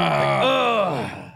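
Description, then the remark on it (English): A person imitates the drawn-out, strained groan someone makes when standing up from a chair. It is one loud, voiced sound of about a second whose pitch swells, sags, and fades away. “It's like they groan as they get out of the chair.”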